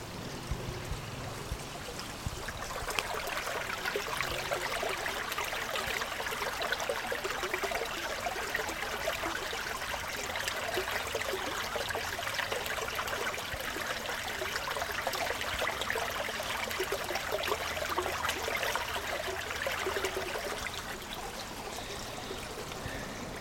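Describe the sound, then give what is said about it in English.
A gentle stream trickles and burbles steadily over rocks, with continuous bright splashing and no voices. “I'm going to try and get some water sound that's a little more gentle than a waterfall.”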